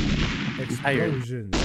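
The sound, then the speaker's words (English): Loud explosion sound effects roar and rumble continuously, with a brief tonal, voice-like wail rising in the middle before a final heavy blast. “Explosions.”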